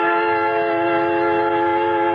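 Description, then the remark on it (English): A creaking train at the West Station sounds loud as it lumbers out through the yards, a steady, sustained tonal whine holding unbroken for about two seconds, with a rumbling low undertone and no voices. “At the West Station, I board a creaking train and wait and wait until finally it lumbers out through the yards.”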